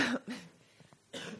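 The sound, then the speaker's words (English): A raspy cough from a lingering autumn cough, in three bursts: two quick harsh hacks, a brief pause with some throat noise, then a final loud cough. “Just can't kick this fall cough”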